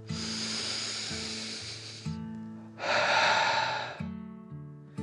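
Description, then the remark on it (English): A long, hissing breath drawn in, a short pause, then a loud, forceful breath out, over a soft steady musical drone. “They took a deep dragon breath together, in and out.”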